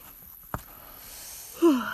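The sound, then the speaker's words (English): A short yawn-like vocal sound that slides downward in pitch near the end, preceded by a single faint click and a quiet, breathy background. “Yawn.”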